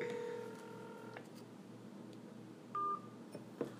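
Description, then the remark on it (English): Telephone redialing tones: a steady electronic tone holds for about a second, then after a pause a brief higher beep sounds, followed by a couple of soft clicks over a low hum. “I'm redialing.”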